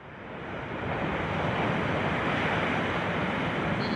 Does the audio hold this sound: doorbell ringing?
no